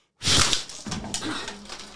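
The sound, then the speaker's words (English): Someone blows out birthday candles with a hard, forceful breath, a loud airy rush that starts abruptly after a brief silence and trails on with a fluttering hiss for nearly two seconds. “I didn't mean to blow it so hard.”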